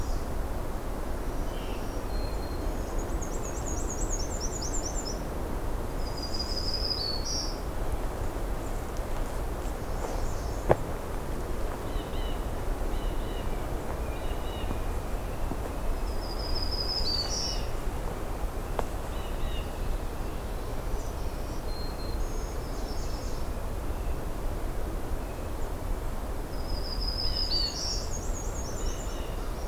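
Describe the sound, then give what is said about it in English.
A black-and-white warbler sings high, thin, squeaky repeated notes in a few separate bursts over a steady low background hiss of outdoor ambience with faint other birds. “There's the black and white again.”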